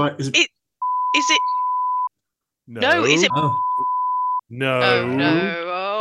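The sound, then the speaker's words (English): Two steady, flat censor beeps cut across a conversation, each lasting over a second, with bursts of talking between and around them. “See, the listeners are just going to hear a load of beeps here.”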